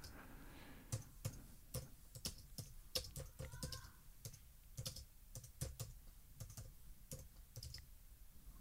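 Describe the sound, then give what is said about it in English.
Irregular bursts of crisp keyboard clacks, fairly quiet, as someone types on a computer keyboard in short runs with small pauses between keystrokes. “I'm just typing a little here.”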